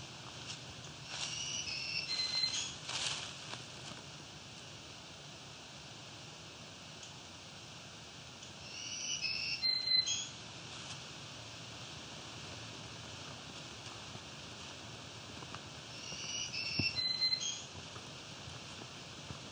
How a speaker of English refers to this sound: green warbler here.